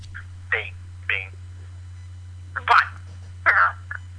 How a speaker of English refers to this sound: Is that a fart? Did he just farted into the drunk dial line, but which I'm totally cool with.